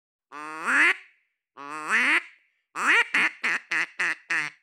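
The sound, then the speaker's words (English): A duck call instrument blown during an interview, not in a wetland: two drawn-out, rising quacks, then a quick run of five short, clipped quacks in steady rhythm, loud and clear with no voices. “John Chambers actually brought his trusty duck call instrument to our interview.”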